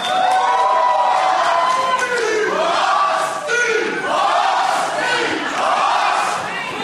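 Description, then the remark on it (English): A large live crowd yells a rhythmic sports chant, loud and continuous, with swelling waves of voices roughly every second and a half filling the whole stretch. “I think that was a sports thing.”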